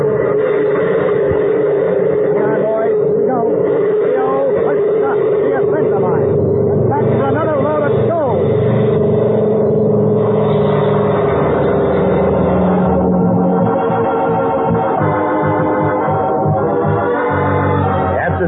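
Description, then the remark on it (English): Both engines of a twin-engine aircraft are started at once and rumble into a loud, steady drone that holds throughout, their pitch wavering slightly as they run, with indistinct voices mixed in beneath the noise. “Once I get the engine started, I'll switch on the landing lights.”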